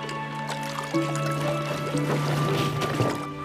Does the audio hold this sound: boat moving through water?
yes